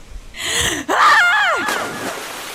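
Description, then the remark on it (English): A woman, asked to scream, lets out a loud, high-pitched scream lasting about a second, wavering in pitch, preceded by a sharp breathy intake and trailing off into a rough, fading cry. “So you run through and you scream? Yes. Can you scream for me?”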